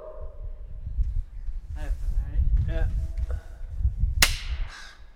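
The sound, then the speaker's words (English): A single sharp hand clap cracks out near the end and rings with a lingering echo inside a smokestack at the south end of Cockatoo Island, following murmured voices and drawn-out vocal sounds over a low rumble. “And when you talk and like clap, it echoes.”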